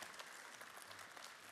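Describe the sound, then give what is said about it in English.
A crowd seated in the seats at a downtown location claps their hands, a steady dense patter of many overlapping claps filling the moment with no one speaking over it. “So here at our downtown location, everybody's sitting out here in the seats, clap your hands because you're a part of the outer court.”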